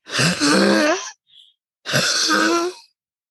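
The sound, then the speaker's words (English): A person makes two harsh, honking throat noises that sound like a goose, each about a second long with a short pause between, loud and rough-edged with no talking. “So I would do this and everyone would be like, do that weird goose thing you can do or whatever.”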